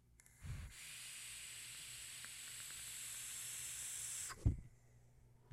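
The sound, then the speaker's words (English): A vape coil in a Twisted Messes RDA fires a dry hit with a steady sizzling hiss for a few seconds, faint crackles ticking through it, with soft low thumps just before and after. “And, oh, that was dry. I got a little bit of crackle on that.”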